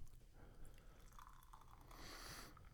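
Beer, a 5.6% ABV caramel brew, pours steadily into a glass with a bubbling, fizzy wash that swells toward the end, moderately loud, with no talking over it.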